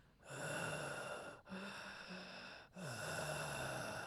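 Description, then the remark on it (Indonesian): A voice imitates heavy breathing heard through headphones: three long, loud, rasping breaths, each separated by a brief pause, with a slightly wheezy, hoarse texture. “Saya cakap kau punya mic kau jatuhkan sikit sebab jangan nafas kuat-kuat lah pasal bunyi nafas ah.”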